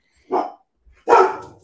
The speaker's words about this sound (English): My dog heard your dog's bark. I was just saying, because Harley's out here barking behind me, and I'm like, you can hear each other.